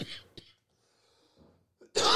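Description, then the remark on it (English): A dry, harsh cough from a dry throat bursts out, followed by a brief click, a quiet pause with faint breathing, then another loud, raspy cough. “Oh, dry throat making me cough.”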